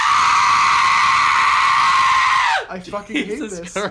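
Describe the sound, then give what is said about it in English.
A person lets out a long, loud, sustained high-pitched wail imitating a banshee's scream for about two and a half seconds, then it cuts off and normal talking follows. “It's the scream of the banshee.”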